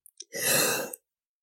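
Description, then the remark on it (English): A single short, breathy in-character yawn from the character Artie, rising and fading over under a second, preceded by a few faint mouth clicks, with no talking. “That is an in-character Artie yawn, everybody.”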